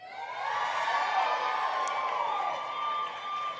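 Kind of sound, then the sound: crowd, scattered audience clapping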